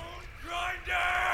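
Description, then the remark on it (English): A person screams loudly twice in quick succession, each cry rising sharply in pitch and holding strong, with a faint rumbling background underneath. “Call his name. I want to hear you scream.”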